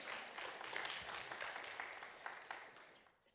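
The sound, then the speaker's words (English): A crowd breaks into sustained applause for Jesus, many hands clapping in a dense, steady wash that holds strong before gradually tapering off toward the end. “You can clap for that, that's fine.”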